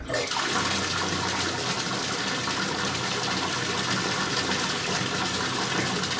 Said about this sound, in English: Water.